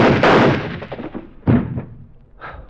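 Three gunshots with no talking: a loud blast with a long rumbling decay, a second sharp crack about a second and a half later, then a fainter third pop.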